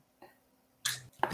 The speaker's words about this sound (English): The loud-ass crunch from the other room? Yeah. Sound like you're chewing on cinder blocks, my guy. You're like mulching on dead leaves in the middle of fall.